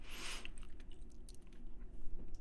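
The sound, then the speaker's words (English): Steady chewing of a very cold crunchy snack that melts fast in the mouth, eaten one at a time, with a rapid string of small moist crunches and bites continuing for a couple of seconds, no one speaking. “It's like kind of crunchy, but it melts so fast in your mouth that it isn't crunchy at the end.”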